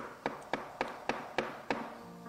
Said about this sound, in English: Behold, everybody say, behold. I stand at the door and I knock.